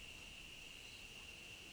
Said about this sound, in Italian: Oggi è un po' più presto del solito, sono solo le 6 e 7 minuti, il sole sta tramontando e forse potete sentire ancora le cicale.